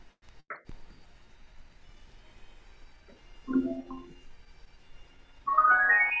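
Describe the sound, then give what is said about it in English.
A bright electronic chime, played as a Bluetooth device instantly reconnects to an iPad, rises quickly in pitch near the end, loud and clear over quiet background handling noise, with a few faint short tones earlier. “Got to hear the chime really well, too.”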